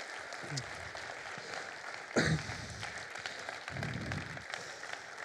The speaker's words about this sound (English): Before I have a couple of remarks, though, can we just give one more massive round of applause to everybody who did an awesome job this morning?